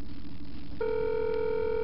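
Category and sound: signal or alarm, telephone ringing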